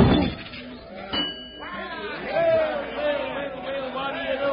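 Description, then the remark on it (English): A hammer strike on a strength-tester rings the bell on the first try with a bright, lingering ding, followed by a second metallic clang, while a crowd murmurs and voices carry on in the background. “The bell on the first try.”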